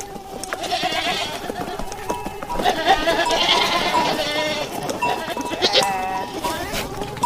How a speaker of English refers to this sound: This particular audio clip has flies buzzing and goats moaning, whatever goats do, and much, much more. Have a listen.